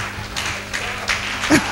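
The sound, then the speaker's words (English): A crowd claps together in a steady, dense wash of applause celebrating children for World Children's Day, with individual claps popping out briefly. A low electrical hum runs underneath, and a voice briefly rises near the end. “Let's clap for all the children in the house.”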